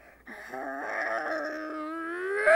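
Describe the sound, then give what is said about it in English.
A young woman vocally imitates a German Shepherd's bark with a single drawn-out, rising, howl-like cry, fairly loud, lasting about two seconds with no other talking. “But none can compare to the greatest bark of all, the German Shepherd.”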